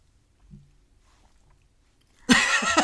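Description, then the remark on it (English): After a couple of seconds of near silence, loud chewing noises abruptly begin as a woman chews food, a dense crunchy, smacking sound that continues to the end. “She's chewing, so she's going to get to us shortly.”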